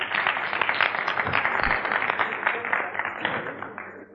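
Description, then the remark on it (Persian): An audience applauds itself for recognizing the video game GTA, many hands clapping in a dense, continuous patter that holds fairly loud for about four seconds before easing off slightly at the end. “آفرین، خودتون تشویق کنید لطفا.”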